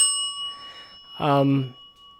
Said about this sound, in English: I don't think you can do the bell before it's funny. What do you mean I can't do the bell before it's funny? Why is it... You got to start doing it so that it's funny when you do it. The bell is like the laugh track.